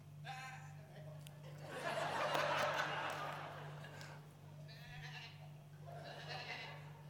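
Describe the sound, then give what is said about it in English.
A person imitates a goat with several wavering, nasal bleats, one at the start and two more near the end, separated by a stretch of breathy rushing noise, against a steady low hum. “Are you right to do a goat? Really? Really? Check this out.”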